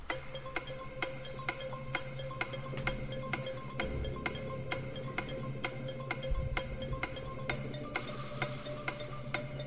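A countdown clock ticks steadily, sharp evenly spaced ticks about twice a second, with a faint low hum underneath and no voices.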